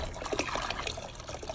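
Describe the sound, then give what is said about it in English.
Water pours and splashes into a nearly full bucket, a steady, fairly quiet sloshing trickle that continues unbroken for the whole moment, with no voices. “And I don't know if you guys can see this, but the water level is right here. The water level, if you look, I can just throw water off the top. It's that full.”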